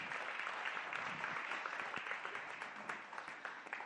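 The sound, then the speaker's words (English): Steady audience applause fills the whole stretch, a dense wash of many hands clapping at an even, sustained level without pauses or spoken words, given for three people about to come up and speak. “give them a round of applause because they're very nervous.”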